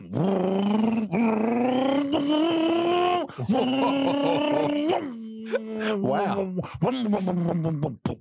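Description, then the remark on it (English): A voice imitates a supercar engine, a loud, sustained buzzing roar that climbs in pitch across several gear-like surges, dropping between shifts, with strong harmonics throughout. “I can do a supercar, no problem.”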